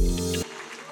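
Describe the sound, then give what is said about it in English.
A sustained, bright musical chord cuts off abruptly, leaving a steady wash of church audience clapping in praise to God at Grace Avenue Church, continuing on its own at moderate loudness. “Now can we keep that going for Jesus? Can we give God praise? Come on, all over this building. You should always clap louder for your God than anything you”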